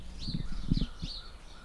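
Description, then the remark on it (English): House sparrows chirp outdoors just after 10 a.m. in three short, bright bursts, fairly faint, over low thumping and rumbling background noise with no one talking. “We have a lot of house sparrows around here.”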